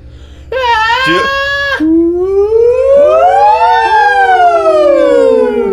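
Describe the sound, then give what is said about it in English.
Two or more people wail loudly, vocally imitating sirens. One gives a short high yelp before a long swooping rise and fall carries on for several seconds. “We call those sirens.”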